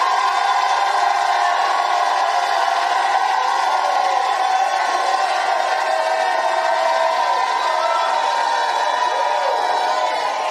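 A large crowd shouts and cheers together in a sustained, dense roar that holds steady at full volume for about ten seconds, with no single voice standing out.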